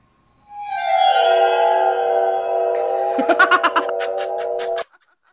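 An eerie waterphone tone swells in and holds a wavering, metallic drone, then a quick run of rhythmic pulses flutters over it before the sound cuts off. No one speaks.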